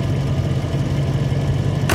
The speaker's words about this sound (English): Josiah had turned off the headlights to save the battery, and the engine was still chugging.